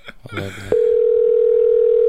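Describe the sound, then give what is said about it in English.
A brief burst of voice-like sound gives way to a loud, steady telephone tone that holds unbroken for over a second, like the line tone heard while an outgoing call connects. “I love that ringtone.”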